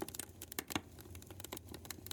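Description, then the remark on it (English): Campfire wood crackling steadily as the fire burns the logs, with many sharp irregular snaps and pops scattered over a soft low rumble of flames, moderately quiet overall, with a few louder pops from sap boiling inside the logs. “As you watch the flames, you can hear the crackles as the fire devours the wood.”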